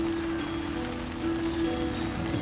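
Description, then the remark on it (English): Steady, dense rain patters continuously on an installation where moving buckets dump water onto amplified strings tuned to one chord. The patter is even, with a sustained low resonant hum ringing underneath the whole time. “I'm not sure if those are real strings, or but somehow they're amplified enough so that you can hear it over the rain.”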